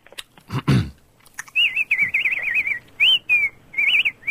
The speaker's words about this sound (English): It sounds like you've got birds in the house with you. No, they're outside, actually.